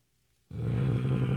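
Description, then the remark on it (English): After half a second of silence, a voice breaks into a loud, low, raspy growl, likened to a Marge Simpson noise from The Simpsons. It holds steady for about a second without fading. “What's that, like a Marge Hello. Simpson noise? Yes, that's my growl.”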